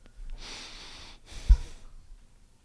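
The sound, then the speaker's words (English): A person breathes loudly and theatrically: a long hissy inhale, a brief pause, then a second forceful breath with a thumpy puff, no talking. “Can you do that to me when I'm breathing loud?”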